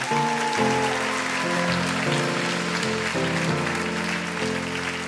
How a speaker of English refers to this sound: Give them one more hand clap.